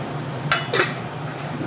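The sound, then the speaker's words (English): Two quick metallic clanks, about a quarter second apart, as a lid is set onto a cooking pot of water with crushed lime leaves so it heats faster, over a steady low hum with no talking. “I'm going to cover it up so it goes a little faster.”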